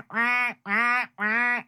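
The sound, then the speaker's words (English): Three loud, nasal honks from a goose or duck, evenly spaced and each about half a second long, with nothing else audible around them. “Oh, that's a goose. That might be a duck too. That sounded a little ducky.”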